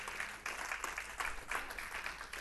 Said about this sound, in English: Somebody clap your hands to the Lord this morning.